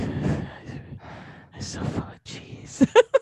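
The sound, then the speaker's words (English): Heavy, breathy mouth breathing right up against a microphone by a person feeling overfull from eating cheese: several rough, noisy inhales and exhales in a loose rhythm, ending in a few short, sharper voiced puffs. “Ew, mouth breathing on a good day isn't good.”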